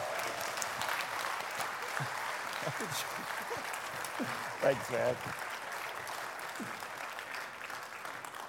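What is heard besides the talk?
audience clapping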